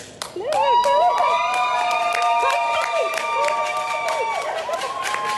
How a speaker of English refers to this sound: Crowds cheered as he arrived home from Tokyo after winning two silvers in table tennis.